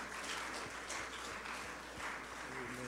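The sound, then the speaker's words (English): An audience at the Anchor Church on a Sunday morning stands and claps together as a hand clap offering of praise to the Lord, a steady, dense wash of hand claps that holds at an even level throughout, with a faint tone or voice rising briefly near the end. “Let's give the Lord a hand clap offering of praise.”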